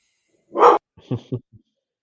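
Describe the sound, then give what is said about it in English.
A dog lets out one sharp, loud bark, followed by a few softer, shorter woofs in quick succession before falling silent. “Dog interference.”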